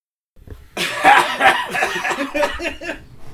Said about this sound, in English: I actually waited for you to finish that countdown before I had to cough. Yeah. That was not wise of me, but